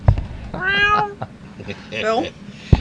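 Two drawn-out cat meows, fairly loud, the second slightly higher and wavering, over a low background rumble with brief knocks at the start and end.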